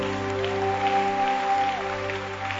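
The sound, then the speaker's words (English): A church audience claps their hands for Jesus in a steady, diffuse wash of applause, mixed with sustained organ or keyboard chords holding underneath throughout. “Give Jesus a hand clap.”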